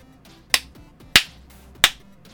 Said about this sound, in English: He clapped his hands 3 or 4 times.